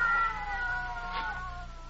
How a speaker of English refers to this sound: What's that? Cats. Oh, I'll break that up.